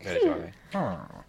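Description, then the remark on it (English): A person vocally imitates a sad dog with two close, drawn-out whimpering cries that slide downward in pitch, separated by a brief pause. “You just sound like a sad dog.”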